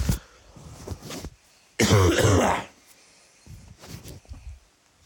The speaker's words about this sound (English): Oh, I'm about to start coughing. One moment.